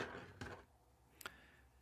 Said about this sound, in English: Oh boy, I'm picking up a pencil.